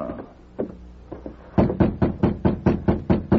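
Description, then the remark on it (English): The Lone Ranger knocking on the wooden door of a track walker's cabin: a few scattered, softer raps, then a steady, insistent run of about nine loud, evenly spaced knocks with no voices. “He'll not answer a rap.”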